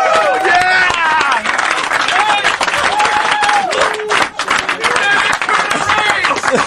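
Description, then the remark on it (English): Loud, continuous applause and clapping fill the whole stretch, mixed with whooping, cheering and laughing voices from a lively group. “A thunderous round of applause.”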